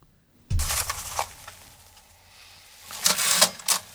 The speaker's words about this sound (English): Is it a typewriter? He's typing.